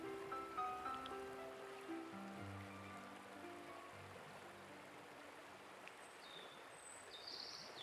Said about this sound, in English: And here we are at the mystical river with our magical lover.